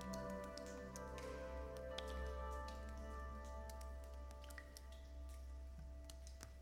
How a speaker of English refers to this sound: And people in the room start pouring bottles. They are poured out into little cups that are passed around the room, these little clay vessels. Inside, you can see a mildly murky water as it is placed in your hands as well,